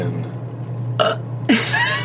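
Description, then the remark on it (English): A loud burp erupts after a short pause, a brief gulping onset followed by a rough, drawn-out belch of about half a second over a steady low hum. “Burp.”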